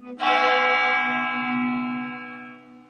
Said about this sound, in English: She remembers that church bell would ring every day, that there's a certain bell for a notice for the death. And she said she remembers as a little girl how awful it sounded.